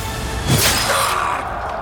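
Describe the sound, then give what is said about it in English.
Satan's sword blade shatters under a low swing of Michael's sword: a sharp metallic shattering crash bursts out with a brief swish, then a thin ringing tone and scattered debris fade away over a steady low rumble. No one speaks. “Satan's blade shattered.”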